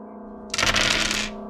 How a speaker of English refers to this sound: Oh my god, that was so many dice. That was so dice. Many dice. Are you kidding me? What the fuck? The sound right there. Literally a fucking handful.